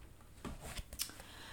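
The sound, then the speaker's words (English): A deck of oracle cards being shuffled: a few soft, papery riffling bursts and crisp flicks, quiet and irregular, with no talking. “Okay, so you might hear me, I'm going to begin to shuffle the cards.”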